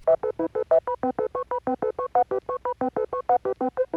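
A quick, steady run of about two dozen short electronic beep-boop tones, each a clipped burst at a shifting pitch, like a phone keypad being dialed rapidly, with no voices.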